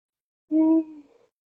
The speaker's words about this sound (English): Woo. Is that a both mics yawn or a real yawn? That was a real yawn. Oh, I'm sorry. Long week.